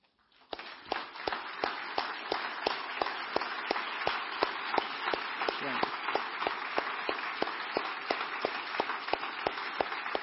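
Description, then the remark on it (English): A church audience bursts into sustained applause and cheering for the OCC early rowing crew, holding steady for about ten seconds, with a sharp regular clapping beat running through the dense roar of hands and voices. “And so would you stand and let's cheer on the OCC early rowing crew.”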